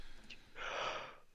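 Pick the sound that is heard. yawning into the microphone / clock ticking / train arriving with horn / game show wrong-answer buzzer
yawning into the microphone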